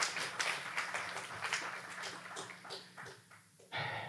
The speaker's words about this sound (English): Can you just clap? It's crazy.